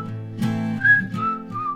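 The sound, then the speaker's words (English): Someone whistles a short melody of a few sliding, clear notes, moderately loud, over a steady low hum in the background. “Whistle's back.”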